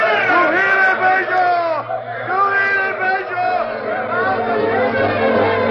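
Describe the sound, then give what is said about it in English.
At night, a crowd of Native American braves of Red Wolf's tribe shouting and whooping wildly in rage, many voices overlapping in rising and falling cries, loud and unbroken for about six seconds. “But one night, wild cries of primitive rage broke out.”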